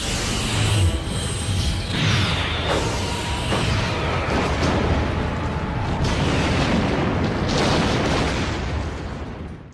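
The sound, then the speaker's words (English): A massive film-style spaceship explosion as enemy ships are blasted apart: a loud, continuous roaring rumble with crackling bursts and whooshes, sustained for about ten seconds before trailing off, with no voices. “Target that explosion and fire.”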